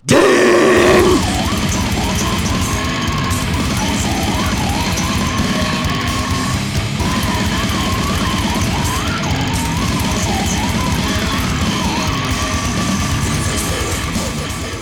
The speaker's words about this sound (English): I tried to yell in British and it didn't work there. No, nope, it just sounds the same.